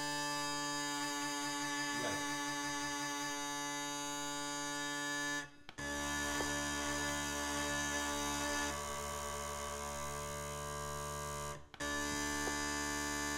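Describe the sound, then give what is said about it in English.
Uilleann pipe drones hold a loud, buzzy, steady chord that wobbles as the tenor drone is put out of tune, broken by two brief gaps as the drones are slid to adjust them. No one speaks. “You can hear the wobble now if I put it out of tune.”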